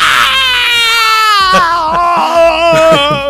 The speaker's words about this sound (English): But oh my God, her scream when she gets stabbed in the back.